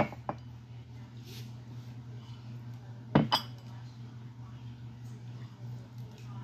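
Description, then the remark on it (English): A few sharp glass clinks during whiskey pouring at a tasting of the Keeper's Heart blend, one early and a close pair midway, ring out clearly over a steady low background hum, with no voices. “So let's try the final blend, which is the Keeper's Heart. Yeah, I guess any glass works at that point.”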